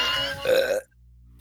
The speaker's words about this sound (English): That's a burp.